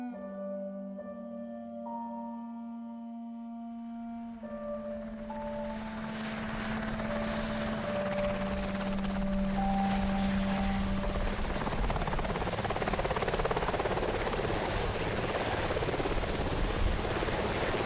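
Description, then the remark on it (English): A helicopter powers up, its steady turbine whine and droning engine tones giving way to a loud, continuous rotor roar that builds and holds, with no voices. “On the 2nd of April, 2005, a Royal Australian Navy Westland Sea King helicopter crashed on the Indonesian island of Nias.”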